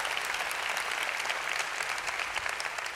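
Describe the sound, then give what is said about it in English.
An audience claps steadily, a dense wash of many overlapping hand claps at an even, moderate loudness that holds without a break and never builds to a roar. “oh, come on, you can clap better than that.”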